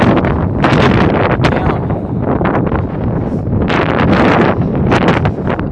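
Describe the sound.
Loud, continuous wind buffets the microphone in heavy gusts, a roaring rumble with sharp bursts throughout, while a person briefly speaks over it.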